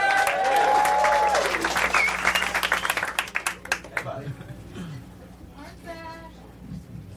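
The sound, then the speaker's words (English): A comedy-show crowd bursts into loud, dense applause for comedian Jono Zalay, introduced as a former champion, with whoops and a whistle on top, then the clapping thins out after a few seconds into scattered claps and murmuring. “Your next former champion is Mr. Jono Zalay. Let him hear it.”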